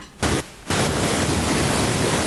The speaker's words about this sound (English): then we're getting weird static.